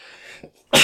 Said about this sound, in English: Probably gonna sneeze.